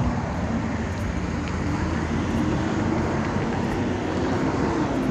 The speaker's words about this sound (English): You heard that goddamn traffic?